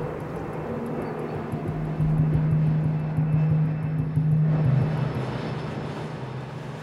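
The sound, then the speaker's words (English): A propeller airplane drones overhead above a natural area with the city all around, a steady low engine hum that swells slightly in the middle and then eases, heard alone with no talking. “We hear crows and geese and mallards, and then we hear planes right after them as well.”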